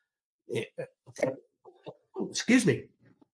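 A few short, snorting intakes build up to one loud, sharp sneeze burst, then fade into quiet breathy sounds.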